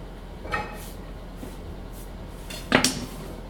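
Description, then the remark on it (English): A pan is set down on a stovetop with a solid metallic clunk, then shifted, giving a second louder knock a couple of seconds later, against a quiet hum, as the cook puts it on medium heat before adding a little olive oil. “I'm gonna put my pan on medium, and I'm just gonna add just a tiny bit of olive oil to the pan to keep it moving around.”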